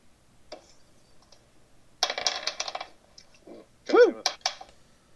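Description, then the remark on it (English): Several players roll d20 dice, which clatter and tumble across a hard tabletop in a few quick, bright, rattling bursts, with a brief voice murmuring in between. “Everyone roll a d20 and add nothing to it.”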